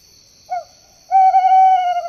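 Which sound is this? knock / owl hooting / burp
owl hooting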